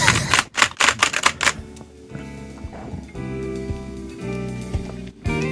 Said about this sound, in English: It's a fast typing. It's busy work, because nothing ever actually goes up,